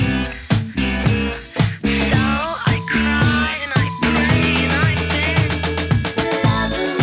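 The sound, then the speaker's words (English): A full band recording plays: electric guitars with moving melodic lines, one descending on the left and another rising along with the bass, over a steady, pulsing bass and drums, with soft piano notes played along quietly underneath. Loud and continuous, with no talking. “So now listen to the recording and just pay attention for that. The guitar that's moving down is kind of over on the left.”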